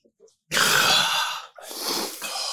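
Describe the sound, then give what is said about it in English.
Heavy, hard breathing: a long, loud, rushing breath followed immediately by a second, slightly softer one, with no talking. “Who's breathing hard?”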